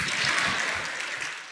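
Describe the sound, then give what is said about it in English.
A crowd at a sermon claps steadily, a dense burst of many hands applauding at once, fairly loud and sustained throughout the short moment with no talking over it. “Please clap for me.”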